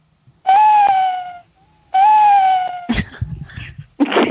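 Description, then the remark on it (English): A person imitates an owl with two long, fairly high hooting calls, loud, pitched almost like a cat's meow. Breathy, scuffling noises follow the calls. “Oh, I was trying to be an owl, but it sounds more like a cat.”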